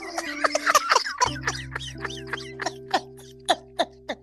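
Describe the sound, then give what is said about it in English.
A chicken clucks in a quick series of short, sharp calls that slow and spread out toward the end, over a steady low hum, with no talking. “I'm gonna play with that chicken.”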